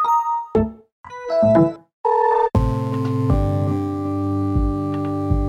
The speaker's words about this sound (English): In fact, removing the start sound meant that the UI sounds became even more important. UI stands for user interface. UI sounds are the notifications you hear as you use your computer.